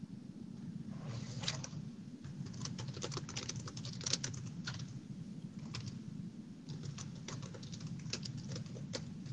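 Steady typing on a computer keyboard, quick irregular clicks in bursts with brief pauses, over a low background hum, with no one talking.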